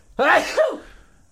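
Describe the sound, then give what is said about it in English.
A single loud sneeze bursts out, a sharp explosive blast followed by a short trailing exhale, with quiet afterward. “Definitely going to sneeze.”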